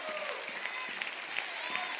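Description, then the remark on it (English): An audience claps hands together in worship, a dense, steady wash of bright overlapping claps that holds at an even level throughout, with no single clap standing out. “Somebody ought to clap their hands right now and say, I'm going to worship today.”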